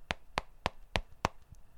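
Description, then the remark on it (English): Five sharp knocks on a door in a quick, steady rhythm, each a crisp rap of even loudness, with no voices over them. “Somebody at the door.”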